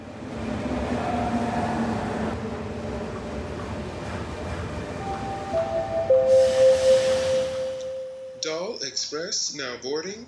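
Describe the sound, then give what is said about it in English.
A train rumbles in and slows, with a long steady whistle-like tone and hissing brakes near the end, followed by people talking. “Now arriving the Doll Express.”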